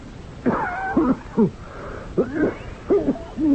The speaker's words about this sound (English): That's a wicked cough, Professor Valdemar.